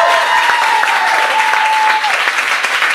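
Steady, loud audience applause fills the whole stretch, a dense wash of clapping with a faint sustained tone running through the first two seconds.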